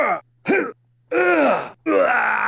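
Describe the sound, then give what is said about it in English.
A 'man injured' sound effect: a man's pained groans, four separate vocal bursts, two short strained grunts followed by two longer, drawn-out moaning groans with falling pitch, loud and alone with silence between them. “Here's man injured 1, 2, 3 and scream.”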